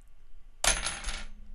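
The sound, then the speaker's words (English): Two tossed coins land on a hard surface with a sudden bright metallic clatter, then ring and rattle briefly before settling. Fairly loud, with no voices. “Two heads, two I'll tails. I'll go with one of each.”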